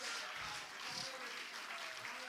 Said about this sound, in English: Hallelujah. Oh, come on, clap your hands to the Lord.